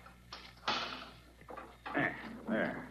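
A key works through an intricate lock on the door to a crypt in several scraping bursts, metal rattling and grinding between brief pauses before a final catch.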